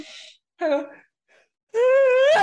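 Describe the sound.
A theatrical sneeze: a breathy intake, a short voiced gasp, then a long rising wail that bursts into a loud, brief explosive sneeze at the very end.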